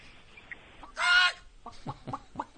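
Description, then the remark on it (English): A loud, squawky chicken call bursts out, followed by a quick run of sharp clucks with a bright, sound-effect quality. “The clucking chicken. You know it. You love it.”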